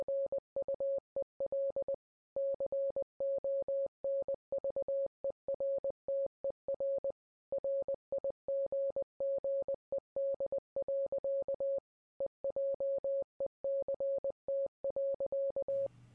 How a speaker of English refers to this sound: It's from Irina's ship. They must be wondering why we stopped. There's something odd about the amplitude. Wait a minute. Dit-dit-da. That's Morse code.